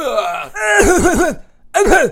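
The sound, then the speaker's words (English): A voice imitates a movie character's gagging cough: a strained, groaning start, then a quick run of three retching hacks, a short pause, and one more loud heave. “It's everything short of like coughing with your tongue sticking all the way out.”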